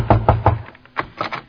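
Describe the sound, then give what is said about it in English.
Knocking on a house door: three firm, evenly spaced raps, a short pause, then three softer knocks in the same steady rhythm. Clear, with no talking. “I'll knock on the door.”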